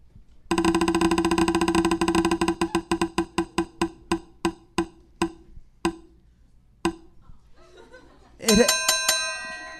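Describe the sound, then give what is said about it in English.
A prize wheel clicks rapidly as it spins, its ticking gradually slowing and stopping, followed by a bright, ringing triple bell ding, loud with no talking. “Triple bell.”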